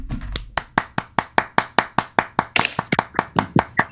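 A short round of applause: steady, evenly spaced hand claps, roughly twenty sharp crisp slaps over a few seconds, with no talking.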